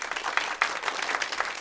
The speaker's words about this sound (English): Last final this morning. Pipe in applause now.